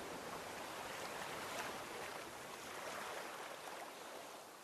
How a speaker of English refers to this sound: The cool waves gently brush the shoreline, then retreat back into the glassy sea. A beam of moonlight illuminates the water, and it glimmers in the night.